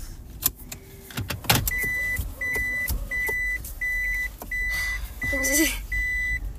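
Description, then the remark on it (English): A car making a three-point turn to go around a garbage truck, with a steady electronic beep repeating every half second over low engine rumble and a few clicks and thumps from inside the cabin. “I'm gonna do a 3-point turn here, so I'm gonna go around that garbage truck.”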